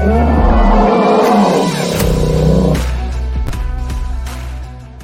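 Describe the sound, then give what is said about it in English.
A loud, deep bear roar sound effect rumbles for a few seconds, then gives way to lower growling and rustling that gradually fades, with no voices present. “Roar, number 100.”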